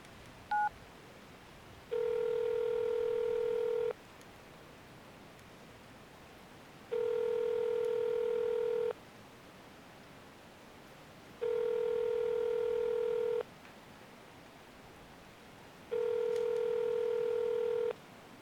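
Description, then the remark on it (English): Telephone tones of a phone call that goes unanswered: four long, steady electronic beeps, each about two seconds, repeating at even intervals with quiet pauses between. They sound clear, with no voices. “Come on, people. Answer your damn phones.”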